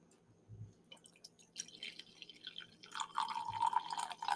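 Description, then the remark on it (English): A drink pours steadily into a glass, the liquid splashing and dripping with a rising, bubbling tone that grows louder toward the end, with no talking. “Look at that pour.”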